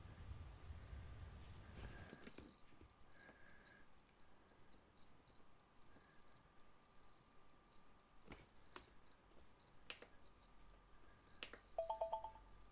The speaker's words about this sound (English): Hello? Have we lost everyone? Where am I? Hello? It seems we've got a technical difficulty and we've all disappeared somehow for some reason.